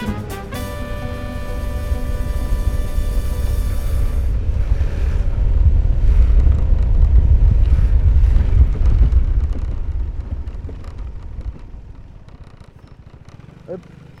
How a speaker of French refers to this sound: On prend le scooter parce qu'on va faire différents endroits, mais on va aller dans le parc du Den. Bon, j'y viens évidemment jamais en scooter.